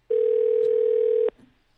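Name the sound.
telephone dial tone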